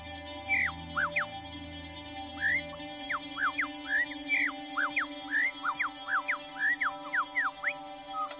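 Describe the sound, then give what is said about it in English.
A male bird with 28-inch tail feathers sings a rapid, varied string of bright whistles, chirps and squawky notes, switching phrases constantly as it imitates other bird species, clear over steady background hum. “He can imitate more than 20 different bird species in one song.”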